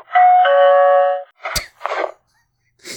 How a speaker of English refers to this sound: This bear that rang the doorbell at 10 o'clock at night. What is the deal with bears ringing doorbells? It's 10 o'clock at night. Fella hears the doorbell ring.